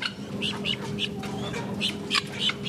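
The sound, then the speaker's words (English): Poultry squawk and cluck over and over in a busy chorus of short, overlapping calls at a live chicken market in Manhattan, steady, with a low mechanical hum running underneath throughout. “The folks at Manhattan Live Chicken Market say they've lost a few customers since bird flu hit the headlines.”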